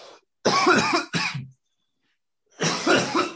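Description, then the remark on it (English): Several harsh coughs in quick bursts after a small hit of smoke: a short one, a strong double cough, then a pause before another raspy hack, with no talking. “What's this dude doing? Oh, he's coughing off a tiny little sip.”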